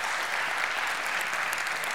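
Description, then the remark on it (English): A church audience breaks into steady, sustained applause to thank 72 members of the church, a dense wash of many hands clapping at once that fills the room evenly for the whole stretch, with no voices standing out. “But I don't think it's inappropriate for us just to pause for just a second and by applause, thank the 72 that are in our church.”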